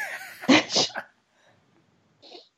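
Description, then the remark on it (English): Loud allergy sniffling: a sharp, explosive burst of nasal air about half a second long, then near silence and one short, quieter sniff at the end. No one talks. “I apologize for all my sniffling, by the way. I have such bad allergies today.”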